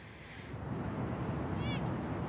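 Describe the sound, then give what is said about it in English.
An infant simulator doll, borrowed from a local home ec teacher, shrieks like a crying baby, a brief high, wavering wail rising near the end over a steady, rumbling noisy background. “Insane shrieking baby. Needs to burp.”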